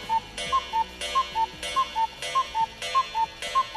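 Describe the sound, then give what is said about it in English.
A cuckoo clock sound effect marking the Cuckoo segment on the show Bob Burney Live: a steady run of about six two-note cuckoo calls, high then lower, each paired with a soft whooshing bellows puff, repeating in an even rhythm with no voices. “And indeed, folks, it is Cuckoo.”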